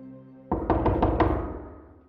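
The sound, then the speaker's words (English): A quick series of about five firm knocks on the forger's door just past 9 o'clock in the evening on 29 May 1945, fairly loud, ringing out over a low sustained musical tone that fades away afterward. “For the forger, the beginning of the end was a knock on the door.”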